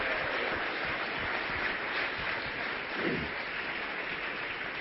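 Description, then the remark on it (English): A crowd claps steadily for about five seconds for standing mothers who have been moms for 40 years or more: a dense, even patter of many hands with no clear rhythm and no pause or swell. “Now, the way we're going to do this is, let's clap.”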